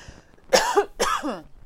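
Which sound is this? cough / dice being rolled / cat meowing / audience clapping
cough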